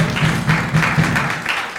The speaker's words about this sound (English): I just want to remind you that June 14th will be our pastor and first lady anniversary celebration here at Heart of Faith. Yeah, let's clap that up at 10 o'clock.